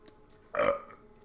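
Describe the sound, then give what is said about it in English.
A single short burp from a cat bursts out over a faint, quiet background, lasting about a third of a second, fairly loud, with no talking around it. “The cat burped like that.”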